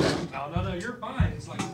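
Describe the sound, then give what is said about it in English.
Two heavy wooden thumps land about half a second apart as chairs are tossed and hit the floor, with people talking over the clatter. “They're chucking chairs. They literally are.”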